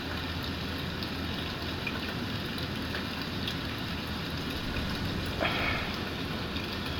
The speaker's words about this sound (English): It's 12:30 at night. And the kids are back. You've got to be able to hear this. I'll hold the phone up to the window. Here, listen. Just hang on. Can you hear him? What are these kids doing? I can't see anybody because the rain is so heavy.